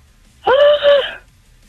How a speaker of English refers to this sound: If I could scream, I would. Let's hear you scream and celebrate.